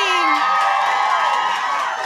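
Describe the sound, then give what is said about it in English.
A live crowd cheers and whoops loudly and continuously, with high-pitched shrieks rising above a dense wash of voices, sustained for a couple of seconds without a break. “Oh, you're woo!”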